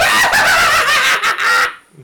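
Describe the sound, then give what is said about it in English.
A man's single loud, shrill yell lasting over a second and a half, so forceful that it overloads the microphone and distorts into a harsh, squawk-like screech before cutting off abruptly. “I think you peeked out the mic.”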